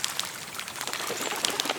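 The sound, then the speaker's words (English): Lots of birds chatter and call in dense bush, a busy jumble of chirps and squawks over steady outdoor ambience, with no one talking. “And there's some other birds making a racket back in the bush as well.”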